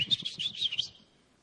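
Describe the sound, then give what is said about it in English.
A person whistles a quick, warbling tune of several short, chirpy notes that run together for about a second, imitating Jesus whistling as Peter lets down his fishing nets, then fades into quiet. It sounds fairly bright, with no talking. “I can just see Jesus just whistling.”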